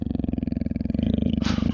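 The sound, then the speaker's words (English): A man's voice imitates a low, rumbling growl, a steady guttural rasp with rapid pulsing texture that swells slightly louder toward the end, with a breathy hiss at the close. “I'm face to face with him, and he has bloodshot eyes, and he's just going, he's just growling at me. He's just going.”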